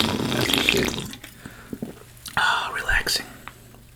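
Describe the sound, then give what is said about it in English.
Wet, hissy slurping of a drink right up at the mic, a long noisy pull followed by a pause, then a second burst of bubbly sips with soft breathy sounds. “I'm a slurp some next to the mic.”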